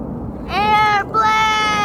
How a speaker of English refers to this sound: Oh, there's a big... Oh, wow, that's a close one. Whoa, that is close. Yeah. All right, so an airplane flying by there.